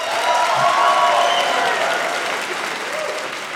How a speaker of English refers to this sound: Round of applause if you have kids. That's pretty good. Round of applause if you don't have kids.